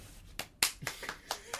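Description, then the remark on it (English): Sparse applause greeting guest Joel Dommett: about six sharp, uneven handclaps spread over under two seconds, fairly loud, with a faint voice murmuring briefly underneath. “You can always applaud yourself.”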